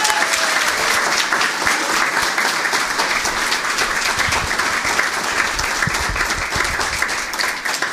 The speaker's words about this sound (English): And all four of the readers tonight, one more round of applause.